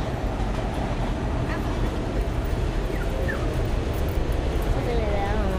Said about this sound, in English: Let's listen to the subway and decide whether we like the sound of the subway or just after.